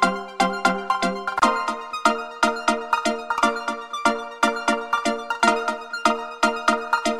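A synth trance track with bright, plucky stab chords pulsing in a fast, steady rhythm over a layered synth pad, playing on its own with no voices.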